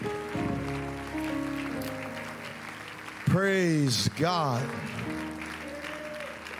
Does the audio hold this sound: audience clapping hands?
yes